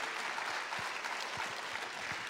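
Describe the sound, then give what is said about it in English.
A crowd applauds steadily for the head wrestling coach of the University of Virginia as he is called up, with dense overlapping claps forming a continuous wash of noise at moderate loudness, no voices heard. “Let's clap for him.”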